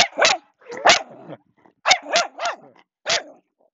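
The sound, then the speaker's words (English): A dog barks sharply and agitatedly in a series of about six loud barks in irregular bursts with brief pauses between them, no talking. “Right in the middle of some good podcasting, right? Some good podcasting, and you had to bark it out.”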